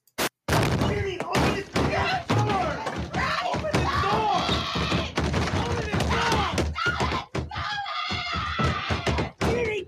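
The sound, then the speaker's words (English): Loud, irregular banging on a locked bathroom door, heavy thuds repeating every second or two, mixed with raised, indistinct voices that carry on through the pounding. “And then you get the resuming of the banging.”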